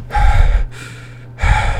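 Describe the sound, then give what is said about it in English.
A voice imitates heavy, ragged breathing heard in a house: two loud, rushing gasps separated by a softer inhale, like someone badly out of breath. No words are spoken. “And then I hear breathing. I hear...”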